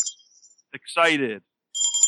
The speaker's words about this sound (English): I'm just going to ring the bell.